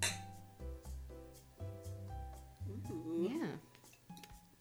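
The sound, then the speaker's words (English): Wine glasses clink together a few times in a toast of cheers, their bright ringing tones lingering briefly while people talk and murmur. “Okay, I'll argue that. Cheers. Cheers.”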